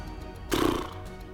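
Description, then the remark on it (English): A short, loud horse whinny, a sound effect from the 2003 film Seabiscuit, bursts out for about half a second, rough and quavering, then cuts off into a quiet background. “Ah, that's a horse.”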